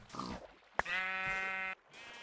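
A short, rough pig grunt leads into a sharp click, then a sheep lets out a long, steady, nasal bleat, fairly loud, before the sound drops away.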